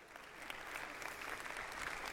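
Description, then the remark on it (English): An audience applauds steadily for a peanut butter drive that collected 2,245 jars, many hands clapping in a dense, even wash of sound with no voices rising above it. “You're not clapping loud enough, because we got to not 1,000, we got to 2,245 jars of peanut butter.”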